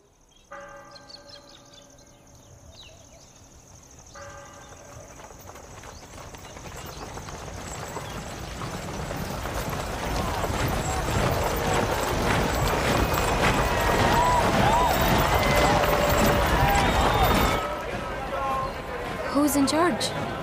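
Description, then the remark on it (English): The hooves of the Sultan's white horse clip-clop in a steady rhythm, growing louder as they approach, mixed with ringing bells and a dense background of crowd noise and indistinct voices. “Look, there, the Sultan, on the white horse.”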